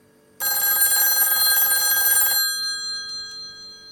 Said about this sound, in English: We will shortly be calling the phone inside the bakery to receive your demands.